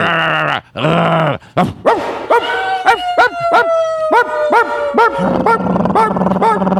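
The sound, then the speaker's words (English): Loud voices of members of a band imitating dogs barking: a few drawn-out howling barks, then a rapid overlapping string of short yelping woofs, with no ordinary speech. “We do, probably the best one we do is dogs barking.”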